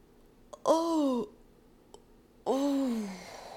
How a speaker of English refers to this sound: And yawning, and the other side.